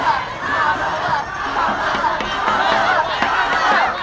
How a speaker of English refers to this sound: On the street in front of a big convention center, there were clusters of Elizabeth Warren supporters, Amy Klobuchar fans, Kamala Harris campaign volunteers in bright yellow shirts. They were all cheering and chanting for their candidates.